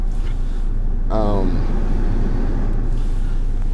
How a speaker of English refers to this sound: As you can already hear, I'm in my car.